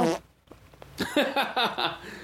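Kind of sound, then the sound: sound effect, fart noises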